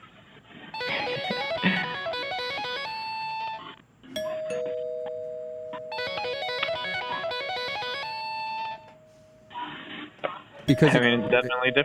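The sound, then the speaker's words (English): An electronic doorbell chime plays a bouncy rock-and-roll tune, loud, sounding twice with a short gap and a long sustained tone, before a person briefly speaks at the end. “But then the doorbell reminds you that it's your doorbell, so you have to answer it.”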